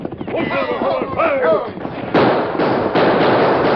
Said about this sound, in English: Back off the boat and keep your eyes on all sides. Keep shooting hard so as we drop anyone that shows himself. Keep shooting, boys.